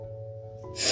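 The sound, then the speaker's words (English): A quiet, steady hum gives way to a single sharp snorting breath near the end, like a sneeze that builds but never quite comes out. “I can't sneeze.”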